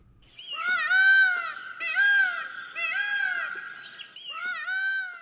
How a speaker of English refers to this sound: the peacock. You'll easily recognize those magnificent birds on sight, but are you familiar with their song?